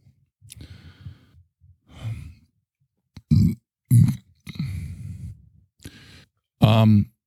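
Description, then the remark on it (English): A run of loud burps: several short gulping bursts, then a longer, deep croaking belch at the end, with soft breathy sighs before them. “International had the burp.”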